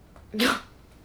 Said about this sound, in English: Mommy, can you stop coughing?